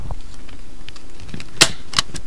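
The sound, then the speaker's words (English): A sharp mechanical snap rings out, followed moments later by a second crisp clack. Both are loud over faint rustling and small handling clicks as a powerful stapler punches through paper. “So anyways, there's this freaking stapler, and it's like super powerful, and I'm used to using those old-fashioned staplers, the staplers that actually work, you know?”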